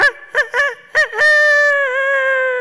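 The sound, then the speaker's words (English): A person imitates a rooster's crow: a few short clipped syllables, then a long, loud, sustained, slightly wavering crow. “That wasn't a bad rooster, was it?”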